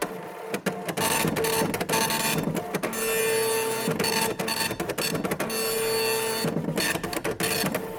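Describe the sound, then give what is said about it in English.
A 3D printer prints, layer by layer, corn-based plastic pieces of a replacement shell for a tortoise named Fred, running steadily and loudly, its mechanical whirring and buzzing broken by brief stuttering pauses and rising motor whines, much like an old dot-matrix printer. No one speaks. “Then each layer was printed with that 3D printer, which reminds me of an old DOS printer.”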